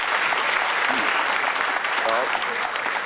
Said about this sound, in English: Well, that's where the applause chose to kick in.